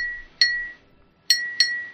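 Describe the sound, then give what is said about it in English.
Three bright metallic pings from a finger flicking a beer can, each ringing briefly with a sustained tone; the first stands alone, the last two come close together. Clear, no talking. “That's me flicking a beer can.”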